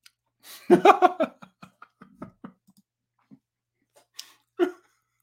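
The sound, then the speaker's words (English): Chewing of roughly 30-year-old gum from a card, which disintegrates in the mouth: a dense burst of crunchy, crackling bites, then scattered softer crunches that thin out, with no talking. “Just chew the card too.”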